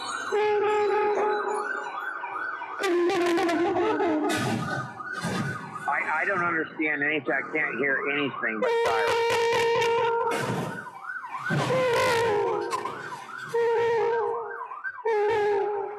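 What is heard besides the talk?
police car siren wailing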